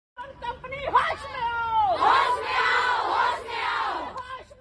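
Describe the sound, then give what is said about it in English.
A crowd of protesters shouts slogans together in loud, overlapping bursts against a company, demanding that its founder, Abhiraj Pehel, come out and talk to them. The shouting swells after a single raised voice and stays dense for several seconds. “About 300 meters away, I could really see a couple of police vans parked in their hundreds, just shouting slogans against the company, demanding that the company's founder, Abhiraj Pehel, come out and talk to them”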